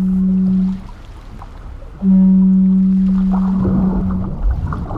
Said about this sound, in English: And now, we're beyond the reef. We're far from home. We're in the open Pacific Ocean.